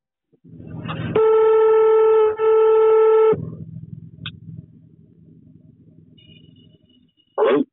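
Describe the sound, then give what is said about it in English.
A telephone ringing tone on a call placed from England to a number in Castle Rock: a loud, steady buzzing tone sounds in two long back-to-back bursts over a faint line hiss, which continues quietly afterward before a brief sound at the end. “And then I rang this number.”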